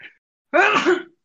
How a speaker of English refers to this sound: Bless you.